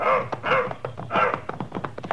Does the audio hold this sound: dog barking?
yes